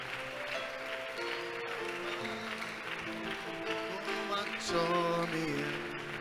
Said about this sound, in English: Come on, clap and pray. Clap and pray.